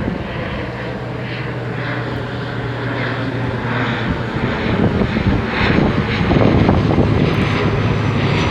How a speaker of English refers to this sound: That was great timing because, as you can probably hear, the plane was flying over me. So I really hope that this sound quality is okay.